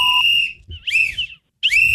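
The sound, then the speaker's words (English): A shrill whistle is blown three times in quick succession, each blast loud, with short gaps of quiet between them and some low background rumble. “I was too busy blowing my whistle.”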